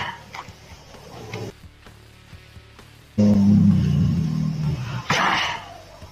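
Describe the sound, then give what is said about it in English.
A tiger sneezes in a sudden loud, breathy burst after a quiet stretch, followed by a second forceful snort-like sneeze. The sounds are deep and rough. “You want to see a tiger sneeze?”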